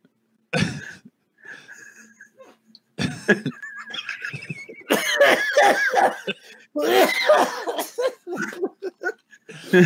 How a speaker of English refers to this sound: I apologize to everybody out there in listening land that I coughed.